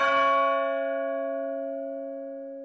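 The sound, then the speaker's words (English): A single deep clock bell strike rings out alone, its metallic overtones humming and slowly fading over a few seconds. “And then the clock tolled again.”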